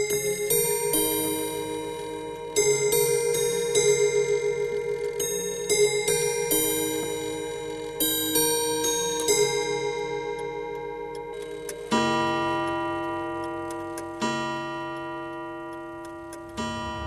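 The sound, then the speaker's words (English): An old mechanical clock at the Irish-Swiss Institute of Horology plays the Westminster chime melody, as heard in London, in clear, ringing tones, then strikes the hour with slow, resonant bell tones, while a steady ticking continues underneath. No one speaks. “So then say, for example, at 3 o'clock, the hands face 3 o'clock, the clock will strike 3. But also with that, it will chime a melody. And this is called a Westminster chime because the melody it chimes is actually the Westminster chime from London.”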